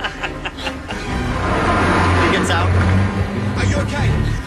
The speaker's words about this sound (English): And then the guy gets out of the cab of the truck, and the truck keeps going, and that's where this clip picks up.